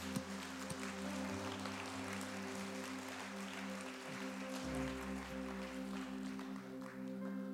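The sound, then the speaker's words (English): An audience claps steadily for several seconds in praise for two people coming, a dense crackle of many hands, while sustained low keyboard or organ chords hold underneath. “Can we just get a hand clap of praise for coming?”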